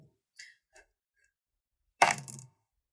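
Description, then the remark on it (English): Dice being re-rolled after one fell on the floor: two faint clicks, a pause, then a sharp clattering burst that rattles for about half a second before stopping. No one speaks. “Now, my dice is on the floor, can I re-roll it?”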